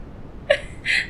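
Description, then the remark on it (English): A dog makes two quick vocal sounds, a short whimpery yelp followed by a breathy, huffing burst. Both are brief and fairly soft, with no talking. “That was perfectly on cue. I love that. They're well trained. Yes, working around our dogs, you know, knocking down our EQ box and me having to reset it every time.”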